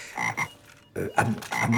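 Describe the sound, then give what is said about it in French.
Frogs croak in a series of throaty bursts, several rasping calls overlapping in quick succession, with a brief lull in the middle before the chorus resumes loudly. No voices. “Oui, voilà, c'est deux grenouilles qui rentrent dans un supermarché.”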